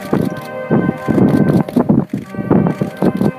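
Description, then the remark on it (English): Strong, gusty wind in New Zealand buffets the microphone in irregular low, rumbling bursts, loud and uneven throughout, with faint steady band music running underneath. “As you can tell, it's really windy.”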